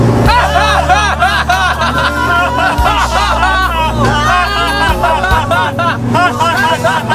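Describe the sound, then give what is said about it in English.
Steady low engine rumble of London city traffic hums throughout, nearly buried under loud overlapping chatter from several people talking at once. “Here we are, in London traffic.”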